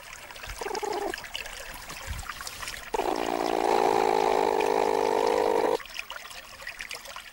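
A platypus call: a brief buzzy growl, then a longer, louder droning growl lasting about three seconds, both over a steady background of trickling water.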